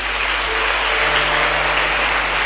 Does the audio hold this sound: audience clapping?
yes